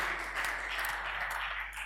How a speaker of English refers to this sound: You know, the way you're clapping is almost like Pharisee.